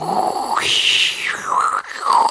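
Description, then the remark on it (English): A person vocally imitates a late-1990s dial-up internet modem connecting: sustained, nasal tones that jump from a mid pitch to a high whine, then slide back down, with a brief crackly hiss near the end. “Shall I do an impression of the dial-up modem?”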